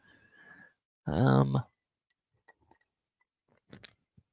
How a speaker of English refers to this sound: Can you hear me crunching ice?